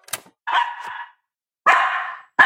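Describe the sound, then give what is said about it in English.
A pet dog, terrified of its owner wearing an LED face mask, gives three sharp, loud barks with short pauses between them, the last one cut off at the end. There is no talking. “My dog is terrified of me.”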